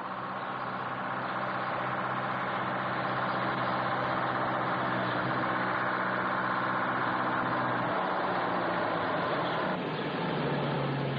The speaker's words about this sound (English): Leaving the field, they find themselves in a narrow country road. Hearing a lorry coming up fast behind them, they stand in the middle of the road and thumb for a lift.